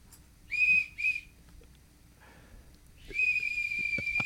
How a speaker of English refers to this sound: I told him before you got here, I'm going to give you this whistle. I bought like 50 of them so I can give each guest one.